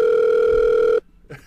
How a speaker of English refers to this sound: What's that? It's your phone.